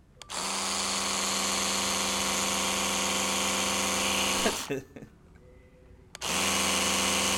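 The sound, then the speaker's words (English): An electric toothbrush buzzes loudly, held too close to the microphone, maybe a foot away, a steady harmonic whine that cuts out briefly near the end, then kicks back on. “Here's the sound for you guys to listen to now knowing that it's a toothbrush.”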